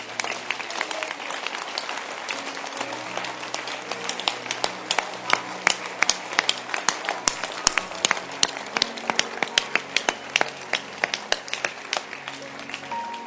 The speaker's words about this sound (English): Stand to your feet. And clap your hands.